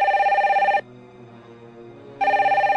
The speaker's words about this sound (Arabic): في تلك الأثناء رن الهاتف.